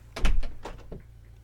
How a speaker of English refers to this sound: Oh, there's a door over there. Let me try that.